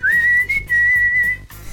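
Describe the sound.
A person whistles the melody of a rock ballad's whistling solo: a quick upward slide into a long, steady held note, clear and fairly loud, with a faint low rumble underneath and no talking.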